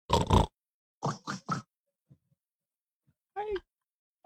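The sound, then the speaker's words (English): A child's voice imitates a pig's oink: one long snorting grunt, then three quick oinks in a row, a short pause, and a final higher, squealy oink. “What's a pig say?”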